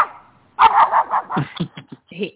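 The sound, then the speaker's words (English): A dog barks in a quick series of short, mid-pitched yips and woofs, starting with a faint whine, then several loud barks tapering into softer yelps. “He comes only when you're around. Otherwise, you know, there's no animals in this house.”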